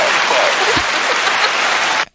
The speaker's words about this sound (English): Can we get a hand clap for that?